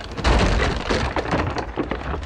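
Lake ice cracking at night beneath a tent: a dense, continuous crackle of sharp snaps and splintering pops over a deep, booming rumble, staying loud throughout with no voices.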